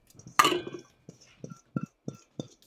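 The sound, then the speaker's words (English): Blueberries drop into a quart-size glass jar: one bright clink first, then a series of soft, dull thuds and light taps spaced about a third of a second apart, with no talking. “So the next step is really just putting everything in the jars. So I'm going to start with my blueberries.”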